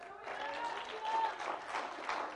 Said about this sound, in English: I want you to clap your hands as you're seated.